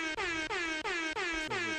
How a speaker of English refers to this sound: Shout out to Sheck. Sheck, give yourself some air horns.